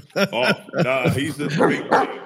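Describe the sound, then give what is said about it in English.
A large Great Dane weighing about 140 barks several times in quick succession, loud, with deep, full-bodied woofs following one another at an uneven rhythm. “He's a big dog. Oh, he's a big Great Dane.”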